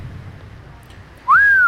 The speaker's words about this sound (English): … whistled and commented to the others.